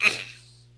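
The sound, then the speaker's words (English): A single short throat clearing: a quick raspy burst that fades out within a second, with no talking around it. “I was clearing my throat because I'm like, there's nowhere to go here.”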